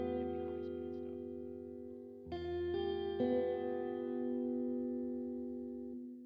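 A song plays alone: sustained, layered chords drenched in echo and effects, drifting in a slow wash and shifting to new harmonies a few times, steady and fairly loud throughout.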